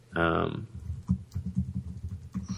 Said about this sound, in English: Sorry for the typing.